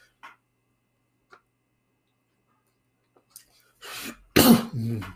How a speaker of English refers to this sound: Sorry, I'm coughing. I talk too much like that.